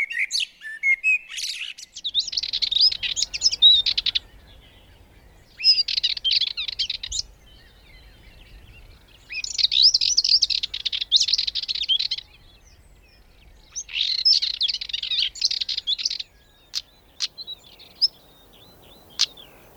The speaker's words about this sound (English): let's go for stonechat, which sound exactly as you would expect them to, like two stones being clicked together. Great. So we'll have blackbird, Dartford Warbler and stonechat coming up now.